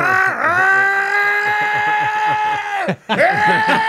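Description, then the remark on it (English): A voice mimics a leaf blower going wide open next door, with a loud, steady, buzzing drone that dips in pitch at the start, cuts off briefly near the end, then resumes. “we can't even talk because the leaf blower is going wide open next door.”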